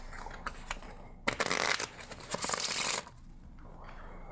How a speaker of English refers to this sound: I'm gonna cut it back into the deck. Shuffle the cards.